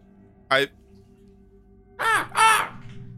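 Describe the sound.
A human voice imitates a crow's caw three times: one short harsh call, a brief pause, then two louder, raspy caws in quick succession, clear with no other talk.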